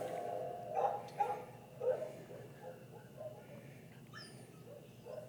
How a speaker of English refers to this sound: That dog.